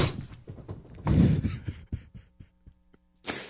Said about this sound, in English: Take that for data with the slammed fist onto the table.